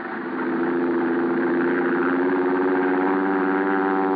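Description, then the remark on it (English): A steady airplane engine of a plane leaving a dry lake bed at night drones on its own, a thick harmonic hum that swells up in the first half-second and then holds level and loud throughout. “I watched Al's plane until it was swallowed by the darkness.”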